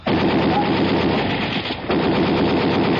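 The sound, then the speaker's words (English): Loud, sustained burst of rapid gunfire blasting at a door lock, dense and harsh throughout, dipping briefly about halfway before the firing surges again; no voices. “I'm going to blast the lock on the door.”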